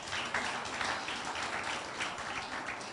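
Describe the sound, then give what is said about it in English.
A crowd at a church Bible study service applauds steadily for three seconds, a dense, even wash of many hands clapping together at moderate loudness, with no voices standing out above it. “You know, you are doing yourself a lot of good, you know, and so you should clap for yourself.”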